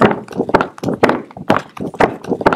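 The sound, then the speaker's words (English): A pony gallops in a steady, rolling rhythm, its hooves striking in quick clustered thuds about twice a second, loud and hollow-sounding, with no voices over it. “Now he's unlocked the gate to the skinny miniature pony pin, and he's galloping away.”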